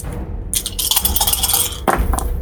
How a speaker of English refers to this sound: Go ahead and roll me three dice. Three dice. Okay.